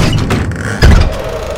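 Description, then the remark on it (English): A door bangs open and hits a wall with a single heavy, low thud partway through, preceded by a faint creak and followed by a steady dull rumble. No one speaks. “And the door swings open and slams against the wall.”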